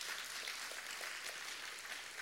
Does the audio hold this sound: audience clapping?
yes